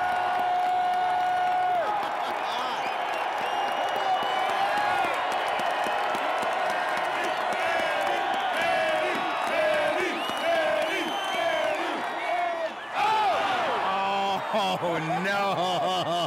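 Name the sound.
ballpark crowd cheering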